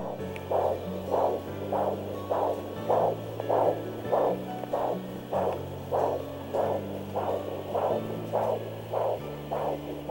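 A fetal heartbeat on ultrasound at 6 weeks and 4 days of pregnancy: quick, steady whooshing pulses, roughly two per second, repeating evenly over a low droning hum with no voices.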